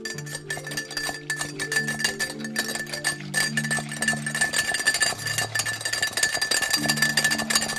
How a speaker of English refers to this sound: What I'm doing is I'm just moving the whisk back and forth. It's whipping it hard and constantly at a big pace.